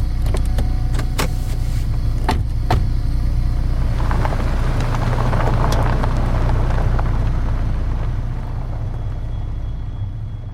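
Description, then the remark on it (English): Steady low engine rumble and road hum from inside a moving car as the driver shovels chips into his mouth and a passenger sits beside him, with a few sharp clicks early on and a brief rising whir like a power window, no voices. “Inside the car, Bill drives, shoveling some chips into his mouth.”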